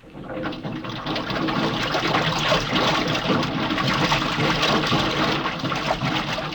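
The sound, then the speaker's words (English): Rushing water pours steadily into a divers' lock as it is filled, a dense, loud gushing and churning that swells quickly and holds constant. “Okay, I'm gonna fill the lock.”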